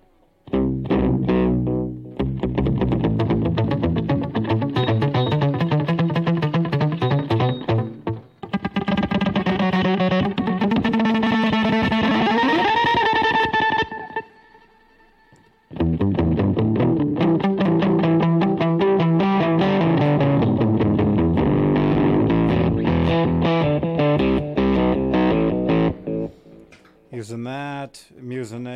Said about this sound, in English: Using that, the octave. I'm using an old Boss. What is that? OC2. Old Boss octave from the early 90s.